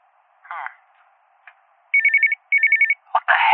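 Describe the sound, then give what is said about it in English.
A telephone on Chief Morrison's private line in his office rings at 5 o'clock in two short electronic bursts of rapid, high-pitched trilling, with a pause between them; brief voice sounds come before and a louder voice sound follows the rings. “Who's calling Morrison at 5 o'clock?”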